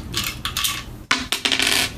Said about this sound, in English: Roll a D4 for me. That's the triangle-looking piece.